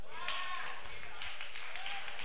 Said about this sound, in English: See that? Three claps in here.